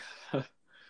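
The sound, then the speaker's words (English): A single short cat meow rises briefly out of quiet, moderately loud, followed by faint background hiss. “God, my cat's meowing.”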